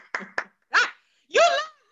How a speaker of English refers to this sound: Clap my hands.